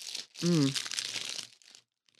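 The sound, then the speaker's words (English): A chocolate peanut butter protein meal bar wrapper crinkles loudly and continuously for about a second and a half, with a brief voiced sound over the start, then a few faint rustles trail off. “Oh, it's like a really loud wrapper.”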